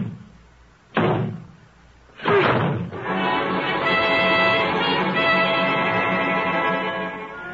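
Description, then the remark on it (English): Two heavy, loud crashing thuds about a second apart as a door is broken in, the second splintering impact giving way to a sustained, dense rumble of sound with no one speaking. “I'd have breaked this door in, or rather we are.”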